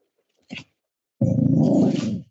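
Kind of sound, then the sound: animal, dog growling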